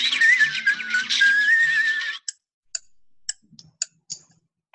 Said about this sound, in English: Oh, yeah. Just whistle.